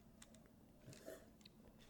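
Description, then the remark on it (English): Soft crunching of someone chewing cashews, a few irregular crisp bites and clicks over a low steady hum, with no talking. “Cashews in tequila.”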